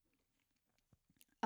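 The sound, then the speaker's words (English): A soft gulp in near silence, a person's quiet swallow picked up by the microphones, with a few small wet mouth clicks, cut off by a sudden louder burst at the very end. “Did you guys hear me gulp?”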